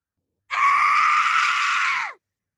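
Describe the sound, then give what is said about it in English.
A single loud, sustained scream lasting under two seconds, harsh and piercing with a steady tone that drops off sharply at the end, performed alone by a human voice. “I won't do it for you now, but like I can do like blood curdling scream.”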